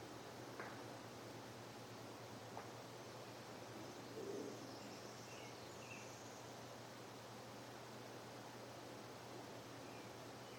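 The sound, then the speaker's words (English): Faint bird song: a few sparse chirps and short calls drift over a steady low hiss and hum, with no one speaking. “You know, listening to that space, listening to the silence, out of which all sounds arise, the bird song.”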